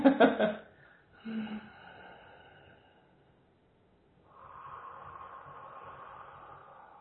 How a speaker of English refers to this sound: Okay, and I just encourage you to continue breathing here.